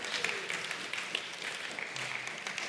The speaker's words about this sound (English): So that lasted about 30 weeks, and we are done. I think a round of applause is in order for that. Thank you, thank you.